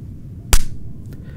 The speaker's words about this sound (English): If none of you could hear that slap, that was me facepalming.